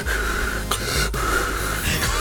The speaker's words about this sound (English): I want you to hear me breathing. A comfortable distance away. I'm trying. No, I want you to hear me breathing.